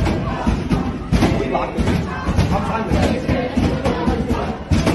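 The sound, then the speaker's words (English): Loud, repeated banging on a locked library door at Cooper Union in New York City by a noisy crowd of students, heavy thuds landing at irregular intervals while many voices shout and clamor. “These Jewish kids are stuck in there with their fellow students banging on the door, terrorized.”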